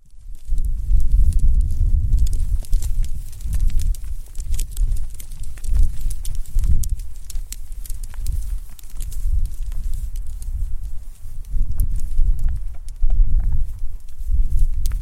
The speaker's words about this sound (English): So as we walk along, I'm going to try and, if we can hear, there's some clicking sound that the reindeers make as they walk. They've got incredibly wide hooves, I guess. We'll try and get a sound of what they're like.